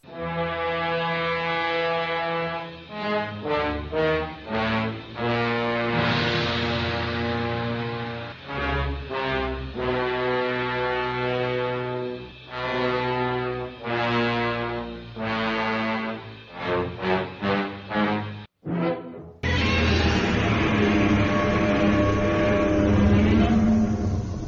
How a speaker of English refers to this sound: Did you hear that, kids? The infamous roar and sound theme music of the one and only King of the Monsters, Godzilla.